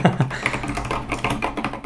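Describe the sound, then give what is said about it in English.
Rapid, uneven clacking of keys on a computer keyboard, a string of sharp clicks with no one speaking. “Oh, I have the wrong keyboard for podcasting, don't I?”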